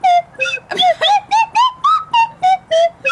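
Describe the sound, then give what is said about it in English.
A loud whistle plays a quick series of about ten short toots, each note sliding up or down in pitch like a trombone slide, with no talking over it. “it says it's got trombone style whistling, I don't know, maneuvers.”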